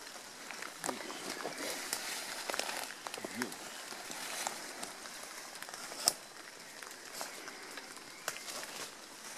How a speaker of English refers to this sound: It's raining out there now.